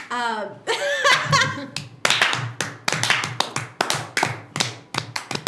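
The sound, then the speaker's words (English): A brief burst of voiced laughter gives way to one person's Citizen Kane-style slow hand clap: about a dozen sharp, crisp claps at an even, deliberate pace of roughly two per second. “Citizen Kane slow clap.”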